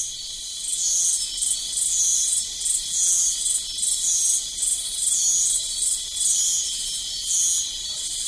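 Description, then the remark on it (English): A dense, steady chorus of crickets chirping at night near the foot of Mount Basavi in Papua New Guinea, high-pitched trills pulsing in a regular rhythm, continuous with no voices. “Before we go, a few more crickets, some frogs, and other various nocturnal creatures that live near the foot of Mount Basavi in Papua New Guinea.”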